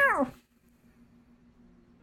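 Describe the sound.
A single short, bright meow voiced by a person imitating a cat, with falling harmonic pitch, followed by a faint steady hum.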